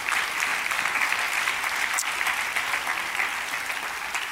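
An audience gives the Lord a hand clap during a sermon, steady, dense applause, a bright continuous wash of many overlapping claps with no break, holding at an even loudness for several seconds.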